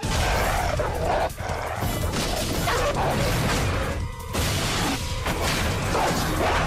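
A dog barks loudly and continuously amid harsh, crashing noise. The racket is nearly unbroken for several seconds, with brief dips between bursts.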